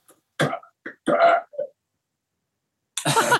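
A few close, guttural burps come in short bursts separated by pauses, with a longer rumbling one in the middle and another loud burp at the end.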